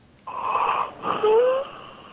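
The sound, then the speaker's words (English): Two strained, wheezy breaths, each a raspy whistling rush of air, the second ending in a rising thin whistle; labored breathing with no talking. “Not breathing very well by the sounds of it.”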